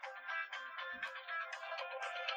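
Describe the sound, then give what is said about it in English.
A phone ringtone from an incoming scam call plays a bright, chiming electronic melody with quick repeating notes, running steadily throughout at a moderate level with no one talking over it. “Mute your damn phone.”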